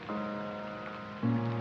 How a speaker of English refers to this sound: And that beautiful soft rain continues to fall.